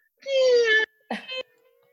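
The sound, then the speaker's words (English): A voice mimics the squeaky-gate sound effect heard in TV shows, with a drawn-out, strained, reedy creak lasting over half a second, then a shorter, rougher second squeak after a brief pause. “There is a sound effect in every single one of these shows. The squeaky gate.”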